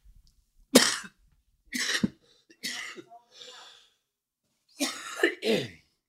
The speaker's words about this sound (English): Miles, please cut out the coughs because this is his wife